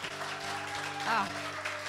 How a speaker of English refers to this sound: Another round of applause for her, y'all.